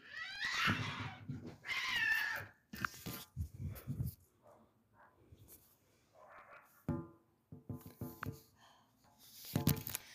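Cats fight, with loud harsh yowls and screeching bursts at the start and end, and lower growls and hissing scuffles in between.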